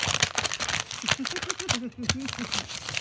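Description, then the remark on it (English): Paper crinkles and crackles in quick, irregular bursts as it's unfolded, while a voice murmurs briefly underneath partway through. “Gather around your speakers, paper fetishists.”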